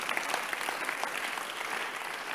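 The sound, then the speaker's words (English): A crowd applauds steadily, a dense wash of many hands clapping at once, sustained at an even loudness with no voices standing out. “Well, you clap after I finish with you.”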